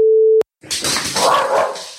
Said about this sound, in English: It's the postman. It's the postman. I don't know what she's barking at.